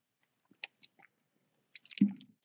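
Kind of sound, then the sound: food or drink, sipping water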